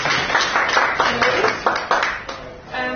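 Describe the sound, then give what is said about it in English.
An audience applauds a speaker from EY who is joining, a steady patter of many hands clapping together, starting to fade near the end as a voice begins to come in. “she'll just give a brief introduction of what she does within EY, but we'll give her a round of applause, please.”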